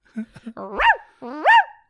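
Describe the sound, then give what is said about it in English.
A person imitates a barking dog: a few short yips, then two louder, drawn-out woofs with a rising and falling pitch, alone with no other talk. “Throwing rose petals at her feet, barking like a dog when she tells you to.”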